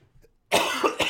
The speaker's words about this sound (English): I went to cough into the mic so that would be like more obvious.